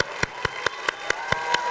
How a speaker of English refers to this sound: I want you to just like give a crazy, heartfelt, passionate round of applause right now. Just do that real quick.